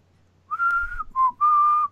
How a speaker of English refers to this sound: There you go. Yeah. There you go. Not as good as I'm capable of whistling, but the best I could do right now. But I felt like it was owed to the show for me to at least try. And I think it sounded relatively like it.